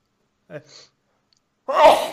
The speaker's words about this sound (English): Every time I go to say something, I go to sneeze at the same time. I'm like, God damn it, body, just rein it in a bit.